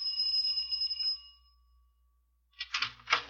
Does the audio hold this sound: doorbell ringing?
yes